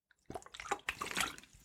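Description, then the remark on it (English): Someone sips and swallows water, a quick run of wet gulping and liquid sounds lasting under two seconds, fairly quiet, with no talking. “I had to get a drink of water there.”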